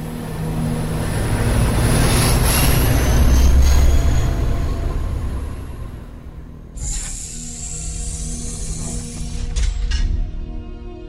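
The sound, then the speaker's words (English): A shuttle car rolls along rails with a heavy, droning rumble that swells and eases, then a shrill metallic wheel squeal rises over it for a few seconds near the end. No one speaks. “Imagine his state of mind as he finds himself sharing the rear seat of the shuttle car with it.”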